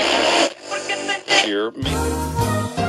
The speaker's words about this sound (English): We're being silenced, Dennis, because we had internet problems there. We did get a lot of interference in there